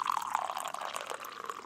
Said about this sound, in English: Here, you want to hear the coffee pouring? I do.